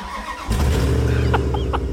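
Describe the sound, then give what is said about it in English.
An old, rusted-out Dodge Ram pickup truck engine turns over and catches after a brief quiet moment, settling into a loud, rumbling idle with a few faint squeaks above it. “Are you in the desert in your rusted out Dodge Ram is what we really want to know.”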